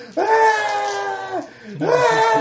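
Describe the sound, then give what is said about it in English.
A person lets out two long, loud, strained screams, separated by a brief breath, sounding like theatrical cries of agony. “So, bureaucrats screaming for your life.”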